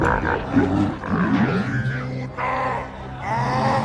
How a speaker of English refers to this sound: Episode 6? Episode 6! Oh! It's when the Rancor dies. When the Rancor... Yeah, listen. Oh. Gate goes down. The gate goes down.